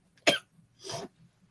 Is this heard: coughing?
yes